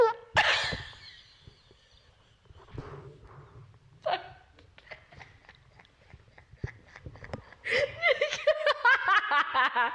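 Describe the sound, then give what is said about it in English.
A fart into the microphone: a sudden burst, then a low buzzy rumble lasting a few seconds, another short blast, and finally loud fits of giggling laughter. “so hang on, I feel like I need a fart.”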